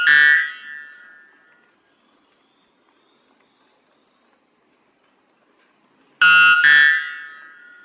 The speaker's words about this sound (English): The white bellbird has the loudest call in the world at 125 decibels.